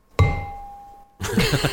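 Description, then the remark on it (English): A wooden spoon strikes an emptied flower pot once, used as a bell: a single hollow metallic strike rings out like a small bell, its tone sustaining and slowly fading, before voices begin talking over the end. “I have come up with the classic combo of a pot that I've taken some flowers out of and a wooden spoon.”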